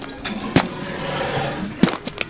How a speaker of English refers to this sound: Oh, that was actually the sounds of elephants pooping.